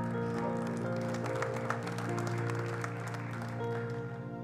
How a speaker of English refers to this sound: And everybody said amen. Come on, give him a hand clap of praise right now.